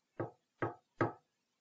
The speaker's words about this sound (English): Then as we huddle closely, we hear a knock from down below.